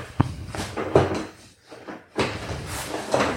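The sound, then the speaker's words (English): A hot pink gaming chair reclines like a car seat using a handle, with its footrest extending: sharp mechanical clunks and creaks, then a longer scraping, shifting rustle, fairly loud, with no talking. “It's like a car seat. Like there's a handle here and I can like.”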